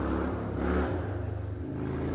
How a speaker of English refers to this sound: There's a motorcycle guy. I'm actually in the Pocono Mountains this week. And I'm trying to do this podcast quickly before the sun goes down. So, and I'm just barely catching it. And somebody's driving around on a motorcycle.